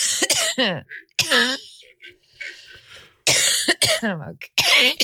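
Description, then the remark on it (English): A person who was sick coughs several times, loud harsh bursts arriving in two clusters separated by a short quiet gap, with a softer throaty rasp in between. “I actually caught you coughing. I recorded it.”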